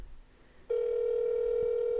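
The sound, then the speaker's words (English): A telephone being dialed up: after a moment of quiet background hiss, a steady, loud, unbroken mid-pitched dial tone switches on and holds to the end, with no voices. “Let's see if we can get him dialed up here.”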